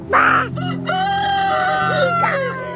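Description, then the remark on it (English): A rooster crows loudly, one long drawn-out cry after a short squawky burst at the start, over a steady low hum, with no talking; outdoors among chickens outside a house. “I am out here with the chickens to escape the chaos inside my house.”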